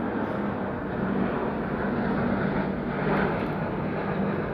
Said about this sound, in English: Excuse the airplane.